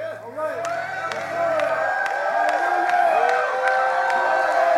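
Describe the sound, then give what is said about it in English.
A large audience in a charismatic Pentecostal church shouts and cheers together, many voices rising and overlapping in a loud, sustained roar with scattered sharp claps, swelling slightly louder partway through. “Shouting.”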